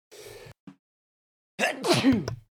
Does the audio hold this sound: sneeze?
yes